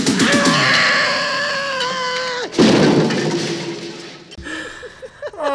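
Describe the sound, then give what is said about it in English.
A man lets out a long, loud scream that slides downward in pitch for a couple of seconds as he falls over a loft railing to his death below, cut off by a heavy crashing impact followed by a rough, fading clatter. “Oh, well, it's no Wilhelm scream, but I'll give it a B- for believability.”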